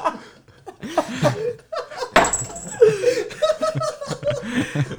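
Dice clatter onto a hard tabletop in a short, sharp burst midway through a dice game, surrounded by laughter and chuckling voices.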